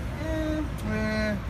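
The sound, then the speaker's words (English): A garbage truck passing: two drawn-out, steady whining tones at a mid pitch, one after the other, over a constant low rumble, with no talking. “We got a garbage truck.”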